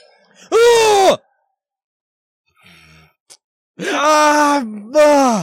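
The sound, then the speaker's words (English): A loud, frightened scream at a first encounter with a giant skeleton: a short cry that drops in pitch, a brief quiet gap with faint shuffling, then a longer sustained shriek that dips and surges again. “Sadly to say, because I'm a giant baby, that probably got the biggest scream, or at least the loudest.”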